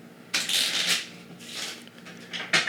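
shuffling cards

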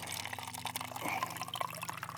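water being poured

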